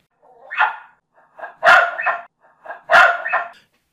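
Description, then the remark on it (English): A female Australian cattle dog barks alone: a softer opening yelp, then two loud, sharp double barks spaced about a second apart, each with a quick rising-falling shape. “ready to go boldly where no Australian cattle dog has gone before.”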